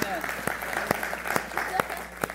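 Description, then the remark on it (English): A church audience breaks into applause during a morning service, sharp overlapping claps repeating steadily, with scattered voices murmuring and calling out beneath the clapping. “Come on, if you're thankful for that this morning, put your hands together and thank the Lord.”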